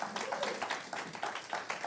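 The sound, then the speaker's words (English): An audience claps together in a dense, steady patter of many hands at moderate volume with no one speaking over it. “Let's give them a hand clap.”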